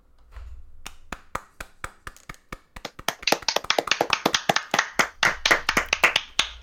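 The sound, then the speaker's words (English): A small group claps, starting with a few sparse, sharp claps that quickly build into a denser, irregular round of applause lasting several seconds, with no talking. “I just want to do a little clap for those before we go to the reward we mentioned before.”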